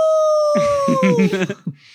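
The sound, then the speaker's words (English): A person imitates a wolf howl: a single drawn-out, wavering howl that slides downward in pitch and breaks off into a rough vocal trail, loud, lasting about two seconds. “And then this is Wolf good Howl.”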